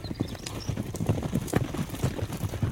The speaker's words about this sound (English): Probably the thing that'll hit you the most is when the horses start running, just the thundering of the hoofbeats. It truly sounds just like a thunderstorm going on around you, and that hits you deep and hard.